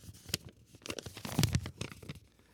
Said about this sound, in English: All right. Hang on, please. And I'll pull a piece of paper out here.